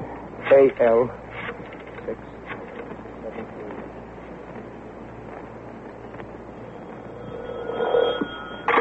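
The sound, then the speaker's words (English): A telephone rings over the line on a call to the YWCA, a short burst near the start and another near the end, thin and filtered, with steady low hiss and faint muffled voice sounds between. “Phone the YW.”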